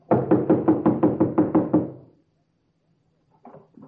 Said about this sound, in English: Hey, you down there. What are you doing there? Knocking and banging, banging and knocking. Stop making so much noise.